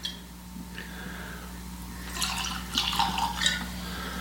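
Eagle Rare whiskey pours into tasting glasses with a rising, gurgling splash that picks up after a quiet start, a little spilling, ending in a few bright trickles and clinks, with no one speaking.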